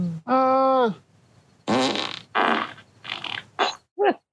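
A loud, buzzy fart holds a steady tone for most of a second, then several shorter, rougher sputtering bursts follow after a pause, ending with a quick squeaky rip.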